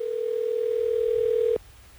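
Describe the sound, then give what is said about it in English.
A telephone rings on an outgoing call placed by the Hot 101.5 radio show: one steady, loud electronic ring tone holds for about a second and a half, then cuts off abruptly into faint background hiss. “Are you ready for us to get her on the phone?”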